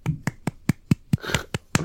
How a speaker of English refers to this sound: Oh, that probably doesn't sound like an applause over the microphone, but it was. Thank you. I'll do a jazz clap.